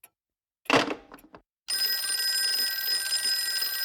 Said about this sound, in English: Oh, who's trying to call me?